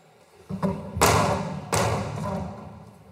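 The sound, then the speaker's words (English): A few heavy, sharp hammer blows strike a spray-painted mural on a hard wall, mimicking gunshots, each a loud thudding crack with a short ringing decay, spaced unevenly with no one talking. “He started to strike the mural with the hammer, mimicking the sounds of gunshots.”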